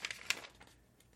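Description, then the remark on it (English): A soft, papery rustle of a book page being turned to page 84, with a few quick crinkly bursts in the first half second before fading into quiet. Faint, with no voices. “I'm turning the page.”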